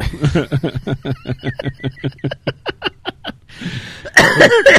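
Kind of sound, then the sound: human body sound, coughing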